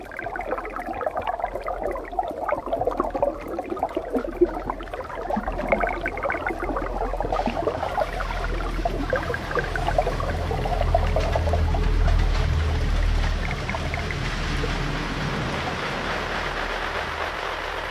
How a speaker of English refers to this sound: These initial sounds are from Life in the Rain, a composition of Joe's from 2019, which explored the sonic qualities of rainfall.